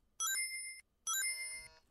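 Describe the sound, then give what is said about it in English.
Two bursts of bright, bell-like electronic chimes of Sonic picking up rings in a video game, separated by a brief silence, the second with a layered, shimmering jingle of Sonic dying, and another chime cutting in at the end. “What is Sonic picking up rings and dying?”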